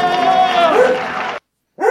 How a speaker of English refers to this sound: Please shut up. Shut up. No reason to bark.